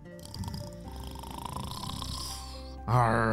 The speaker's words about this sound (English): But this pirate had somehow crashed into this water and was now snoring, and Simon didn't exactly know what to do.